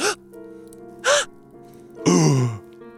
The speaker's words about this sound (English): … gasps. Several people in the room also gasp.